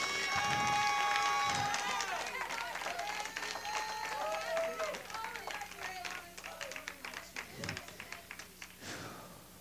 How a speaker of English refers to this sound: Give God praise. Oh, give the Lord a hand clap of praise.